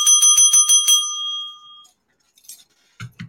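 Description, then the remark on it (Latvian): A small desk bell is tapped about six times in quick succession, its bright ring sustaining and fading out over the next second, followed by a few faint, brief sounds. “Tu ko, arī viesnīcas biznesam sāc pievērsties? Es vienmēr esmu gribējis zvaniņu.”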